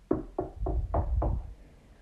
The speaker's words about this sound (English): What the? Another knock.